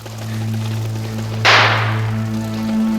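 A single sharp small-caliber gunshot cracks out in the city's green spaces over a steady low engine-like drone, its bright report trailing off over about a second. No one speaks.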